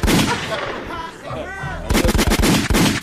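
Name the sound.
gunshot sound effect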